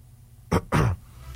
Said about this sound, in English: Don't move away from the microphone. You're coughing and spluttering.